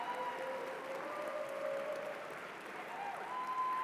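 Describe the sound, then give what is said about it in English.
An audience claps steadily throughout, a dense, even wash of many hands with no pauses and no voices. A faint sustained tone runs quietly beneath the applause. “Let's see if you're still clapping at the end.”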